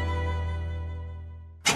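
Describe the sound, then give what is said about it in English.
A Suburban truck engine rumbles while driving across Wisconsin, with a steady, deep drone that eases slightly before a sudden loud, noisy burst at the very end, with no voices. “There goes Pam Yonke across Wisconsin in her suburban truck.”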